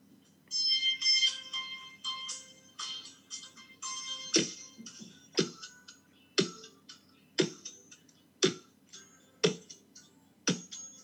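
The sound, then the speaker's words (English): A hand taps on a desk in a steady rhythm, about once a second, producing sharp dull knocks that follow a bright, tinkling melodic passage with no voices. “Are you hitting your hand on the desk?”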